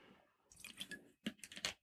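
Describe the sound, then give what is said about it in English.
Quiet sipping of water during a break: a few short, wet slurps and mouth clicks in quick succession, with no talking. “My praise breaks this time consist of water.”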